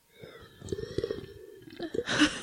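A close, drawn-out slurp of someone sipping a hot drink, with wet gurgling bursts and a louder airy suck near the end; no one speaks.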